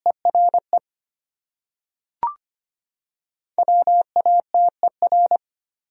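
Morse code sent at 25 words per minute, spelling one of the 100 most common words, beeps in a single steady mid-pitched tone, keyed into quick dots and dashes: a short burst, a pause broken by a brief click, then a longer run of characters.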